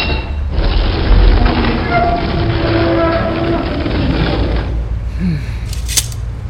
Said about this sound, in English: With a look of unadulterated hate, the vampire warrior reached out and grabbed a stone lever. With little effort, she pushed it down, and the great doors swung open before me.